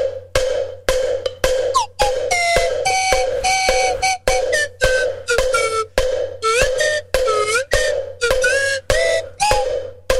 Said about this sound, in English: We're in need of more slide whistle. Maybe we can, can't we do a cowbell slide whistle combo thing together, you and me? I mean, if I just give you the beat, can you do